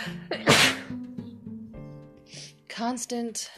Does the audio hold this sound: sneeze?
yes